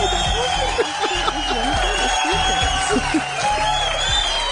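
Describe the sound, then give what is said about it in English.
A large crowd cheers and shouts steadily throughout, a dense wash of overlapping voices with occasional whoops rising above, sustained at a constant level. “All right, I heard the crowd cheering.”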